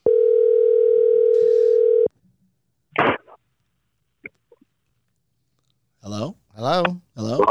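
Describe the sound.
A loud, steady phone dial tone hums for about two seconds as a call is placed to a guest, then cuts off, followed by a sharp click, a few faint taps, and then a voice briefly speaking near the end.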